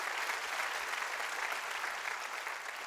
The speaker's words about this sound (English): Oh, let's give him an applause. Wow. Wow.